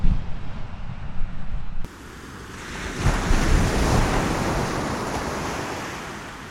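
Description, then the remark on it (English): Ocean waves break and wash in, a broad roaring surge that swells around the middle and slowly fades, with gusty wind buffeting the microphone at the start. No one speaks. “Even when the waves aren't so great like today.”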